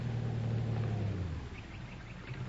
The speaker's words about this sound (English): Oh, hey, here comes a car. Oh, you get out on the road and flag it down.